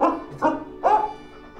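A dog gives three quick, mid-pitched barks in a short burst, the last one slightly longer and more drawn out, with no one talking.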